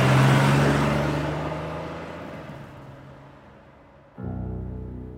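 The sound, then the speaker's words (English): A car engine roars loudly, then steadily fades as the car speeds away from the front of an airport in the afternoon, until the sound cuts abruptly to a steady low background hum. “The car swings around the front of the airport, driven by one of his guys. Chapo climbs in and they speed off into the afternoon.”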